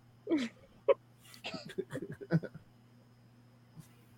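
Raspy wheezing breaths come in a quick irregular run of short bursts, some with a whiny voiced edge, then fade out over a faint steady electrical hum.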